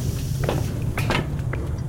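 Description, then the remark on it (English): A small hatch creaks and clunks open in a few short scraping bursts, heard over a steady low mechanical hum. “This hatch is much smaller. Perhaps for maintenance crews.”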